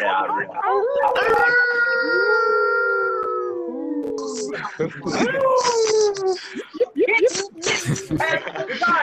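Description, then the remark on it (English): Several people howl like wolves together over an online call on a full moon night, long drawn-out rising and falling howls overlapping, breaking into shorter yips and whoops toward the end. Loud. “So let's get those wolf howls going.”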